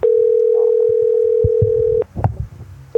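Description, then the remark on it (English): A steady, mid-pitched telephone call tone drones loudly for about two seconds, then cuts off to leave scattered low thumps and rustling before the same tone briefly returns at the end. “Crazy when we try to call as a robot and a robot picks up.”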